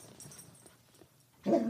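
A dog makes low, quiet grumbling sounds, then lets out a sudden loud bark near the end, with no talking.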